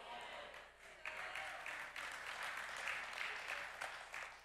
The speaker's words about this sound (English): I didn't think I'd get very many claps.